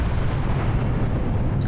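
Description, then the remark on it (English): A massive explosion engulfing the lower part of a tower roars with deep, heavy low-end rumble, loud and sustained across the whole moment, a dense wall of blast noise with no voices. “A massive explosion engulfs the lower part of the tower.”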